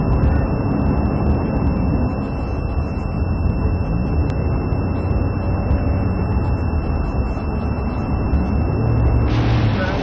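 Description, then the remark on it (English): Loud, continuous roar of police cars driving fast in a pursuit with lights and sirens, engine and road noise dominating throughout, steady high-pitched siren tones running above it, and a brief surge of noise near the end as one police car passes another. “And you'll see a cop car pass another cop car.”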